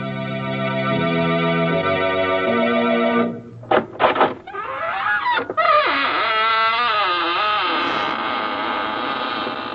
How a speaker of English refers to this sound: This is your host, Raymond, inviting you in through the squeaking door.